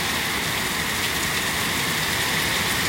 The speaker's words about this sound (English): If it's not obvious, it's raining here really hard.